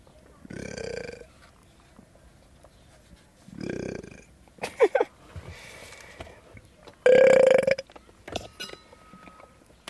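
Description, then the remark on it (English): Several loud burps, separated by pauses, each a low rumbling belch, with one long drawn-out tonal burp near the end, plus a few clicks and small noises in between. “I should sample my burps.”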